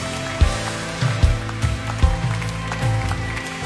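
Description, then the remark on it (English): A church audience at Stevens Creek Church claps, a dense, steady patter of many hands, with regular low thumps pulsing underneath, fairly loud without any voices. “Come on, let's just clap our hands and celebrate what God is doing.”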